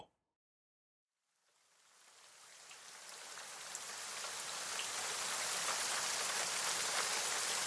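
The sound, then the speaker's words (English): After a brief silence, cold rain fades in and swells into a steady, dense patter beating against the dark windows of a tavern in a far northern town after dark, growing louder and filling the space with no voices. “The cold rain beats against the dark windows of the Salty Skiff Tavern in the far northern town of Port Lunal.”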